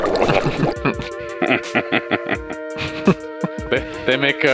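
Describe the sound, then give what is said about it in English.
A voice imitates a water cooler glugging: a quick run of gurgling, bubbly vocal pulses, moderately loud, with a burst of breathy sound at the start. “add in the water cooler sound. That's their sound of acknowledgement.”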